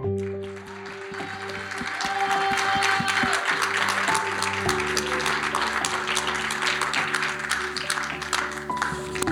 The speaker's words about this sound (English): I want you to give the Lord a loud clap and a shout of praise. Can we do that? One, two, go. Everybody.